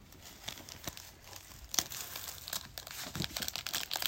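A foil Panini Select NFL trading card pack being torn open, with continuous crinkling and sharp crackles and rips scattered throughout, fairly quiet with no voices.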